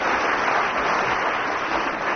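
An audience claps in a dense, steady round of applause, a continuous crackling wash of many hands at a fairly loud, even level with no voices over it.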